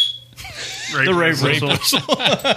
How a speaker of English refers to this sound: The rape whistle. And it's got the belt clip. Never leave home without your rape whistle.